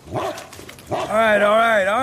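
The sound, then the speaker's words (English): A wolf gives two quick, rough barks, then breaks into a long, loud howl that wavers up and down in pitch before trailing off. “That wolf listened to you?”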